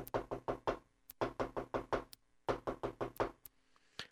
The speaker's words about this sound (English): And then there was that knock on the door.